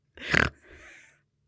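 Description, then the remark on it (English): A breathy yawn: a sharp, airy intake that swells quickly, then a softer, drawn-out exhale trailing off over about a second, with no talking. “No, I was yawning.”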